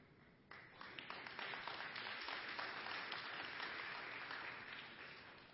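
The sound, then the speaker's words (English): An audience breaks into sustained applause, many hands clapping in a dense, steady wash that swells after a quieter start and holds loud for several seconds before easing slightly. “And that's a good clapping point right there.”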